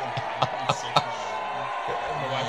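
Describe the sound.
A crowd boos steadily in a loud, dense wash of voices, punctuated early on by three sharp thumps about a quarter-second apart.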